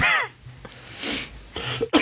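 A short series of raspy coughs, about three bursts with brief pauses between them, loud and breathy with no talking over them.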